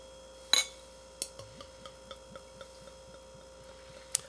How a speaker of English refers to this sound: We got the bottle here, we got the glass. Just lining things up if you're listening at home, make sure we get the pour. Here we go.